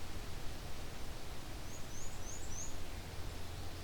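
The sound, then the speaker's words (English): A male black-and-white warbler sings a very quiet, high song of four or five short, thin notes in a quick run, faint above a steady hiss and low background rumble. “Very quiet song. Of course, they can get much louder than that.”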